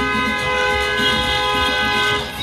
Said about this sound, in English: I started to hear all of the honking.